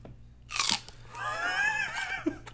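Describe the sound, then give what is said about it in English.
A loud crunch of raw celery being bitten, followed by wet, fibrous chewing that continues steadily for a couple of seconds with no talking. “I would work better when I didn't have to finish chewing the celery.”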